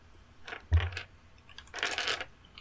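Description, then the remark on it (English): Eight-sided dice clatter and tumble across a tabletop in two short bursts, a solid knock and rattle first, then a longer scattering roll, with no voices. “So why don't each of you give me a D8?”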